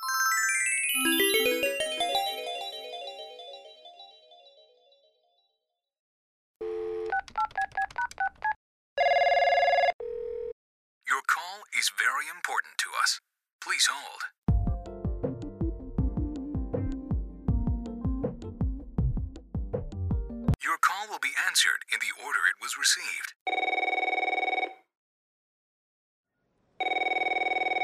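telephone dialing then ringing

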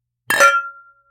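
glasses clinking

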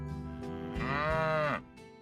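cow mooing

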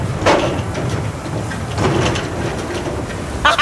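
thunderstorm with heavy rain

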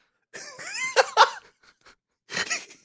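dry cough

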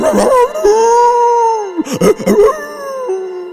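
dog howling

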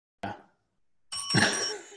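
desk bell ringing

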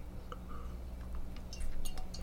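glasses clinking

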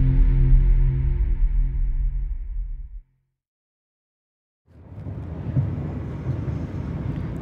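car driving on road

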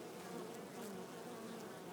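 honeybees buzzing

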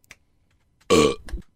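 burp

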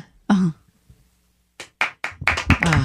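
hand clapping

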